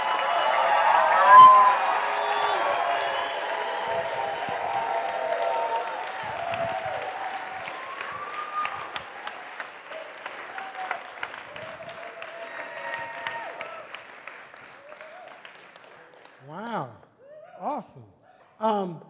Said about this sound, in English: But would you give him a ridiculously inappropriate amount of applause?